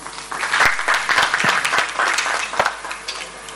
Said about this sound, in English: A round of applause